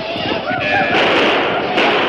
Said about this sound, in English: Suddenly, fiery arrows shot through the curtain of night and thudded into the ranch house roof. Flames licked hungrily at the wooden structure, and soon it was a blazing inferno.